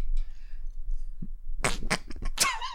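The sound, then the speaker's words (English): A loud fart rips out in a few raspy, sputtering bursts after a quiet stretch of faint background murmur. “I farted. I did a fart, man.”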